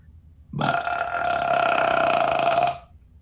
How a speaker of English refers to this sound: You do best belches too.